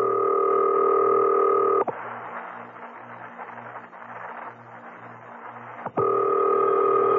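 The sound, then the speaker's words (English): A telephone being dialed: a steady dial tone hums, then cuts to a few seconds of rapid, rhythmic clicking before the tone returns. Clear, with no one speaking. “Now, I must have quiet while I make this call.”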